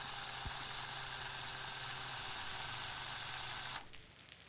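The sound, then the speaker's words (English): A small drill shaving metal whirs in a steady, high-pitched buzzing whine that holds constant for several seconds, then cuts off abruptly, leaving a quieter hiss. “I pretended not to notice him pull out a small drill and instead lit my pipe and took a deep breath over the soft sound of metal shaving metal.”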